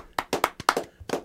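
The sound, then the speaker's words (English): Scattered hand claps, about eight sharp slaps in a little over a second, uneven in rhythm and moderately loud, like a small group applauding as a guest is introduced to talk about the film Boy Makes Girl. No cheering or voices are heard. “The crowd goes mad.”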